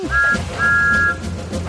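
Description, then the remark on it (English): In a Thomas the Tank Engine story, a ranger imitates a kookaburra call with two steady, high whistled notes, a short one followed by a longer held one, standing out clearly over a low background rumble. “As Thomas puffed slowly along, Ranger Jill made the bird sound again.”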